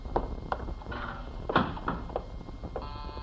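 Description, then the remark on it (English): Several sharp, loud knocks on a door, landing at uneven intervals with short pauses between them, no voices present. “Who can that be at the door?”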